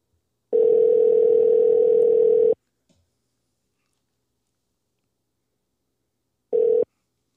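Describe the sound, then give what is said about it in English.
A telephone ringback tone while waiting for a call to be answered, a steady mid-pitched electronic buzz lasting about two seconds, then four seconds of silence before the next ring begins. Clear, with no voices. “She better pick up the phone, too.”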